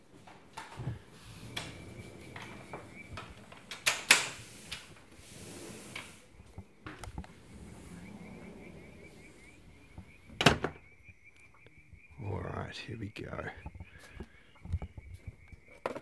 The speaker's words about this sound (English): It's a little bit chilly. I can hear some frogs and crickets.